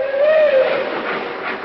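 A train pulls out of the station, watched from a hotel window, with a single sustained whistle tone that sags slightly in pitch, over a steady hiss of steam and chugging noise that carries on after the whistle fades.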